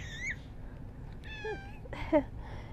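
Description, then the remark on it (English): A female pet cat meows several times, short harmonic calls with rising and falling pitch, over a low steady background hum with no talking. “My cat Tintin is here.”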